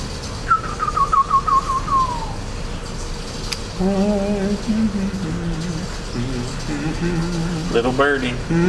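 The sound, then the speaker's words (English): A hymn melody is whistled for a couple of seconds, a wavering phrase that glides downward, followed by lower sustained melodic voice tones over steady background hum. “The next one is, why should my heart be lonely and long for heaven and home?”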